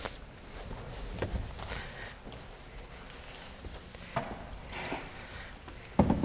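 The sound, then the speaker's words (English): Shuffling footsteps and soft knocks as three children carry their chairs forward across a floor to form an arc, with a few sharper clunks scattered through a quiet background and a louder bump at the end. “to bring their chairs forward.”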